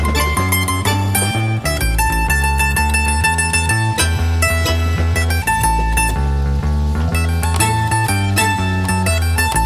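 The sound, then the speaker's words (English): A bluesy tune on mandolin with steady, bright plucked notes over a strong bass and rhythmic backing, loud and continuous throughout with no voices. “It's kind of interesting to hear like a bluesy song done on a mandolin.”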